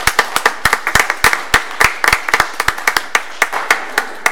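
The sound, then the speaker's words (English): An audience applauds the customer service staff with sharp, irregular handclaps that patter along steadily for several seconds, fairly loud and with no voices over them. “I would love to see the applause even louder because customer service during these most difficult times over these last 18 or more months has been a challenge that certainly our customer service area has never faced before.”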